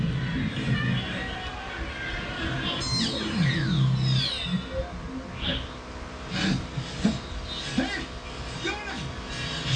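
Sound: crowd chanting in unison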